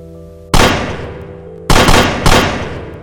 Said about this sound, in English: I point my finger at the bartender and shoot my pretend gun at her. Bang. Pew, pew.